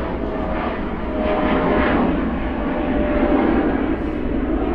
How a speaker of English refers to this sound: Let the plane go by.